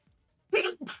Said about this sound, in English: Excuse me. Gesundheit. Bless you.